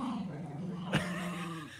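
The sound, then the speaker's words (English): A small dog wearing a clown costume growls low and steadily throughout, with a brief sharp snap or yip breaking in around the middle before the rumbling growl carries on. “Now, the dog knows it's being made fun of at this point, right? That's hence the defensive posture.”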